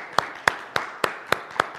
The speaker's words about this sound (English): Okay, thank you guys. Yeah, one more round of applause.